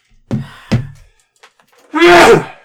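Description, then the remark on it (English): A loud, breathy sneeze bursts out near the end with a voiced, wailing edge, after two short, sharp thumps earlier and a moment of quiet between them. “Bless you.”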